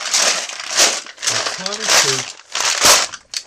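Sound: dice rattling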